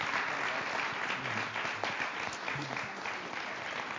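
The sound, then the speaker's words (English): An audience claps steadily to thank the guests at the end of a question session, a dense, sustained wash of applause that holds at an even level for several seconds, with faint murmurs from the crowd underneath. “Can we give these guys a round of applause and thank them?”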